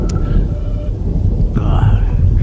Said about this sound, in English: I hate the rain. Get the umbrellas.